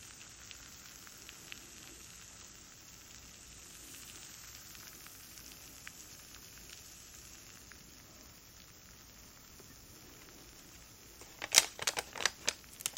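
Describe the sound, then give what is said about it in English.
Steady soft fizzing of an effervescent medicine dissolving in a glass of water, a faint crackling hiss throughout, ending with a few sharp, louder clicks and taps near the end. “Fun fizzy element to it, which is very fun.”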